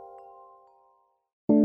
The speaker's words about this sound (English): Woodstock Chimes, the world's favorite wind chime.